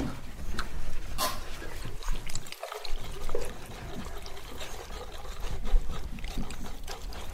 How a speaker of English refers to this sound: You hold this in the mini, in the middle. And you do like really small, fast, strong stirs like this. Okay. I'll pour more liquid.